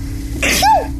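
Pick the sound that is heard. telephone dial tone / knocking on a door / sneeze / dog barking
sneeze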